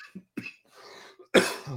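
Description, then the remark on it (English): A person coughs several times: two short, sharp coughs, a rough wheezy stretch, then a loud, harsh final cough with a raspy tail. No speech. “Be sure to send your boy some cough medicine.”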